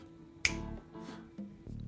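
A pop song cover plays at a moderate level, with steady sustained harmonic tones and a sharp finger-snap-like click early on, followed by soft percussive accents. No one talks.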